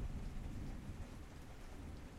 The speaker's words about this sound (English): Oh, that's thunder. I'm outside. It's raining. Can you hear me?